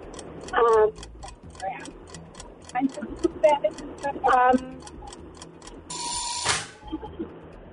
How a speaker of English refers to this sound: Oh, there's the buzzer. I'm sorry.